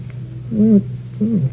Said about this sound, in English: Here, kitty. Cat. She must have a whole house full of them.